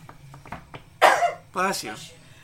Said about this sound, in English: Bless you. Thank you. Your God bless you. Whichever God you might worship.